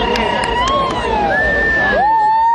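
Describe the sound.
A large crowd at the Beale Street Music Festival, waiting at a stage after the stage lights go out before a show, murmurs in a steady, dense hubbub of many voices, while long smooth gliding tones rise and fall above the chatter.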